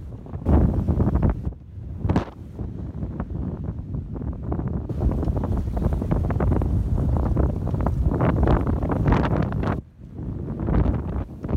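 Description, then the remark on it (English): Strong wind buffets the microphone in loud, roaring gusts while waves wash and slosh against a boat, heard from the boat's deck at sea as conditions have picked up a lot over the last day; a continuous heavy rumble with brief lulls and surges, no voices. “I'm out here on deck. Just want to show you some conditions. They've picked up a lot in the last day.”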